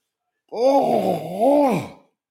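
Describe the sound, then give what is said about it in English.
A long, drawn-out voiced yawn, fairly loud, its pitch dipping and rising in a moaning sweep for about a second and a half before trailing off into silence. “I am yawning already.”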